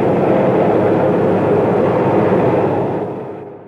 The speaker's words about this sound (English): We're on the hangar deck of the New Orleans, and the helicopter has been lowered on the elevator. We'll be rolled off,